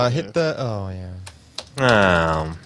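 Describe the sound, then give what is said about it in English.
A few sharp, quick clicks of laptop keys being pressed to insert a coin in an arcade game, heard between stretches of a loud, sustained tonal sound with a voice-like quality. “Hit the buttons in the insert coin. Player one insert coin. If only had a mechanical keyboard up there, on the laptop.”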